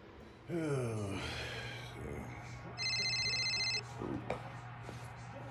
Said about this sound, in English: Where's my cell phone? Where is my damn cell? What the? How is this fucking thing ringing? What is going on here?